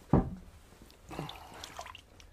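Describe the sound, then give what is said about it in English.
Water sloshes and splashes softly in a basin as a woman bathes a wound, fairly quiet: one sharp splash at the start, then a stretch of gentle dripping and swirling. No one speaks. “As she started to bathe the wound”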